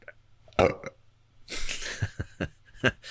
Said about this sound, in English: Once you stop burping.